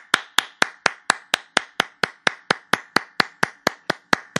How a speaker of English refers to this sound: That was me clapping. Congratulations. That's awesome.